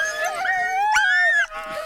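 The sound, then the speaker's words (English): Several sled dogs howl and whine together, their high, wavering cries overlapping and sliding in pitch. The chorus is loud, with a brief break near the end before resuming. The dogs are at Wolf Song Adventure in Wisconsin, where first-time mushers learn mushing. “as they showed him and other first-time mushers how to ride on the back of a sled at 12 miles an hour with 8 dogs pulling as one.”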